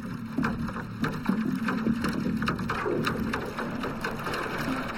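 A barge engine grinds steadily underwater, a deep continuous hum with tonal rumble, overlaid by scattered crackles and clicking, heard through a hydrophone with no voices present. A huge barge moving up the River Liffey from O'Connell Bridge; its gears and engine grinding are audible underwater.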